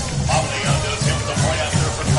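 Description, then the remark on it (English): A stadium crowd cheers in a steady, dense roar after a touchdown catch by Coleman in a football game against Athens, with low rhythmic pulses repeating through it like chanting or clapping. No distinct voice stands out. “As this kind of woke up that crowd a little bit, as you can hear”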